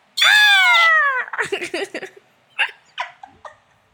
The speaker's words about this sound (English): Can we insert like an eagle screech like behind like America?